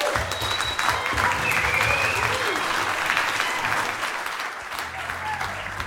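An audience at a live event applauds steadily for several seconds after a music performance, a dense wash of clapping from many hands with a few faint whoops, loud and sustained, tapering only slightly toward the end.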